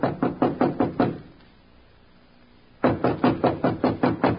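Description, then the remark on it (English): Firm knocking on the wooden door of Mr. Sloan's room, a quick series of about seven raps, then a pause of nearly two seconds before another run of rapid knocks. Loud, with no voices. “Standing at the door, he hesitated. Then, squaring his shoulders, he knocked.”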